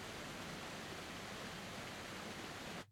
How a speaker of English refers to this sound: As you're spending this time with the Father, you notice a waterfall. And there is this beautiful, refreshing, inviting water cascading over this waterfall.